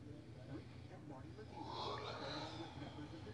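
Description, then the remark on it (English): A drawn-out yawn swells halfway through, a breathy, voiced sigh that rises and falls over about a second against a low steady background hum. “I can't stop yawning.”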